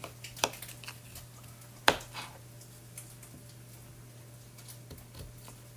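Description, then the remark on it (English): A knife cuts a cucumber into long strips to put on rice, two crisp, separate chops against a board, with a few faint clicks between them over a steady low hum. No one speaks. “So I'm cutting my cucumber into long strips to put on the rice.”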